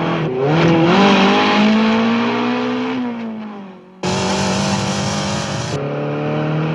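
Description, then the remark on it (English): The engine of a Lotus Esprit sports car, the James Bond car from the film, revs hard and accelerates, its pitch climbing through gears, then drops off before a loud, abrupt roar resumes with no talking. “For me, the most beautiful Bond car ever, the magnificent Lotus Esprit, which Q issues to Bond in Sardinia.”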